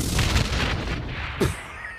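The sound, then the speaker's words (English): A loud explosion sound effect: a rumbling, noisy build-up, then one sharp, punchy blast that decays quickly, so it sounds almost like a gunshot. No one speaks. “I was going to say, that was like almost more of a gunshot than an explosion.”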